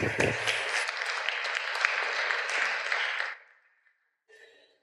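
A burst of applause from a crowd, dense steady clapping for about three seconds before quickly fading out, followed by a brief faint tonal sound at the end.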